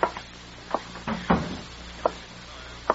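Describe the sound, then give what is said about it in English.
A door swings shut with a solid, muffled thump near the middle, surrounded by a few sharp wooden clicks and knocks at irregular intervals, with no talking. “Close the door, please.”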